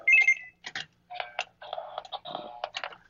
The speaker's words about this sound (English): Turn off this door buzzer.